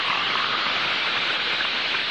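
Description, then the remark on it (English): A steady, hissing fizz of naturally carbonated Saratoga Vichy mineral water, a dense crackle of tiny bubbles holding an even level for a couple of seconds with no voices. “That's merely the sound of Saratoga Vichy and its long-lasting fizz.”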